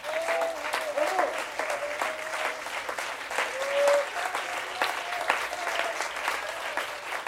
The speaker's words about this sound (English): He is still in control. Come on, clap your hands to Him.